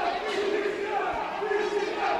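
A large crowd shouts and roars continuously, a dense wall of raised voices filling the space at steady loudness, with no single speaker standing out.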